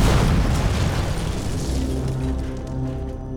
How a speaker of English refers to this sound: Within seconds, the motion-sensitive pipe bomb inside the box exploded.